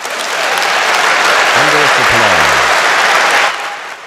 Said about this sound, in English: Thunderous applause. Oh, my goodness. Thunderous applause.